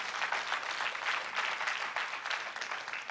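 A room full of people claps steadily, a dense, sustained wash of applause that holds at an even level throughout without pausing, with no voices coming through.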